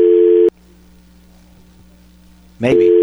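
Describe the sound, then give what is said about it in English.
A loud telephone busy signal tone plays on a radio call-in phone line after the caller's call dropped, cuts out into a low hum for about two seconds, then a chirp leads back into the steady busy tone. No one speaks. “We lost Keith. We don't have Keith. All right, we're going to hang that up.”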